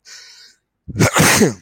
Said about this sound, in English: So, excuse me, I know. I knew I was going to sneeze.